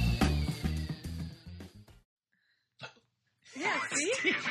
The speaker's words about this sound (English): Are you serious? Yes, you had the hiccups? Oh my God.